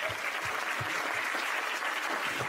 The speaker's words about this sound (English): The way you all just applauded yourselves